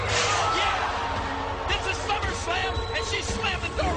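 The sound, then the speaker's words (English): A heavy door slams with a loud thud onto a wrestler's head during a wrestling match amid a roaring, cheering crowd, followed by a few more sharp knocks as the noisy crowd din continues throughout. “Slam the door right on his head.”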